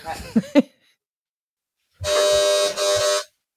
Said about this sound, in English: Oh, my aggressive doorbell. I'll ignore it. Was quite aggressive.